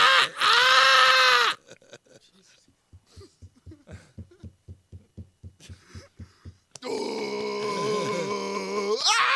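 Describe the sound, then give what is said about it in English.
A person imitates a gorilla, opening with a loud harmonic howl, then a run of rhythmic low grunts, and ending with another long, strained, roaring vocal burst. “That's a gorilla, not a monkey.”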